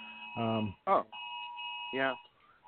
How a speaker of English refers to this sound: Sorry, Amber Alert on my phone. I apologize.